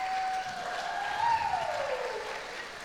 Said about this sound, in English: Yeah, clap for him.